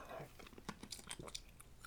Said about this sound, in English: All right, hold on. I've got a piece of ice here I want to chew.